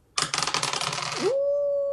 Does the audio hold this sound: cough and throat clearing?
no